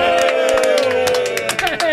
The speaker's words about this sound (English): Give us applause.